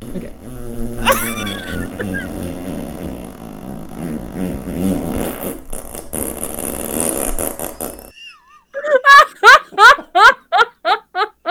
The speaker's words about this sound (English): Well, I think the best thing is that I have an app that specializes in fart sounds. But it's not as good when you do it with your mouth. It's not. That's this what is, she said. This is my, oh boy. This is my favorite one from the app.